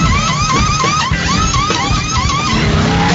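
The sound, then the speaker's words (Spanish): Loud racing car engines rev and scream continuously, with rising and falling pitch sweeps and bursts of tire skidding over a dense roar, intense, with no talking. “Los motores están calentando. Y a toda velocidad giramos por el apasionante mundo del deporte motor.”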